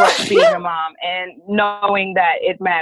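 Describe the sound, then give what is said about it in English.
A loud sneeze bursts out at the start, followed right away by a woman talking steadily. “Bless you.”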